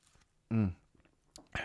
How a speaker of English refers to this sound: All right, I got a cup. Yeah, I got the left one. Nice. All right, here we go. Taking a sip.